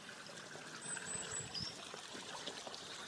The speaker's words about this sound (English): There we go, Babbling Brook for you.